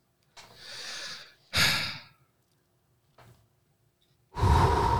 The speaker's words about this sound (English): Let's do some breathing exercises, kids.